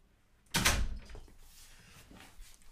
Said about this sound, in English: Sorry, I had to shut the door there for a second.